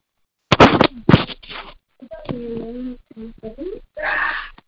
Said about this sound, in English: Oh, I hear the little one in the background. Yeah, I just had to tell them to shut the door. The whole crew's downstairs.